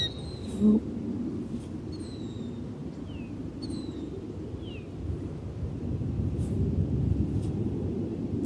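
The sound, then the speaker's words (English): In the morning, a bird gives a series of short, sharp descending calls, spaced a second or so apart, over a steady low outdoor rumble like wind. No one speaks. “That's what the bird's telling me this morning. Don't come any closer.”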